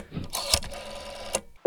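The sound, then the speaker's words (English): An old rotary telephone dial whirs and clicks, with a couple of sharp mechanical snaps, then a steady electronic tone suddenly starts at the very end; a second rotary phone is held to an 8-track recorder. “It's dialing.”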